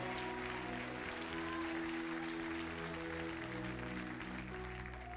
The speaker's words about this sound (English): God bless America. Give the Lord a clap offering for our country.